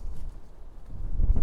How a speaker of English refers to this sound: Sorry, it's got windy again, so I'm going to go into the corner.